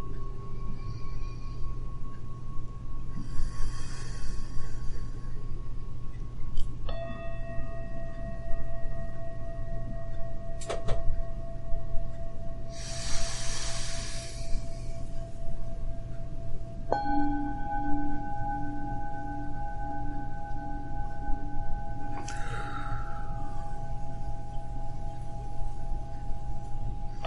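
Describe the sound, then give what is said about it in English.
Slow, deep breaths during a breathing exercise come as a few soft airy rushes spaced several seconds apart, over a steady low hum and sustained electronic tones, with no talking. “Okay, so that's one set of breathing.”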